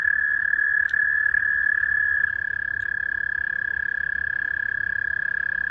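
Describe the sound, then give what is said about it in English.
A frog in water calls in one unbroken, steady high trill lasting the whole time, loud, over a soft background hum with no voices. “Number one, take a look at this frog.”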